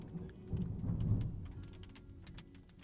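A low, rolling rumble of thunder swells and fades over a few seconds, with steady rain pattering and scattered drips ticking in the foreground.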